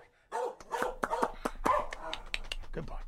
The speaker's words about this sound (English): Mahler is such a sweetheart. Keep barking, Mahler.